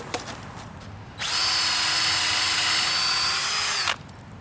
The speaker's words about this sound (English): Okay, one row down. Nice. So your plan is to drill all the holes and then insert the dowels.